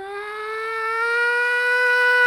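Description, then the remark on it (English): A voice imitates the high-pitched whine a game console makes while idle in a menu, holding one steady, buzzy tone for about two seconds that creeps slightly upward in pitch and grows a little louder. “The worst part about it is that it does it when the game isn't trying to do anything. It's just fucking idle.”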